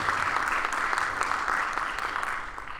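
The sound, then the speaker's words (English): An audience claps steadily for the full stretch, a dense, even wash of many hands with no pauses, fairly loud and fading slightly at the very end, as a candidate representing Zone 3 is introduced. “Clap it up. Clap it up.”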